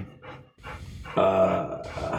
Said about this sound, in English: Sounds like the dog's excited too. The dog's hot and bothered, excited.